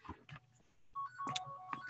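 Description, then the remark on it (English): A person's own phone rings while they are reading a text aloud: the ringtone plays a short electronic melody of steady, beeping tones that shift in pitch, following a few soft bumps and rustles with no talking. “That would be my phone for some reason.”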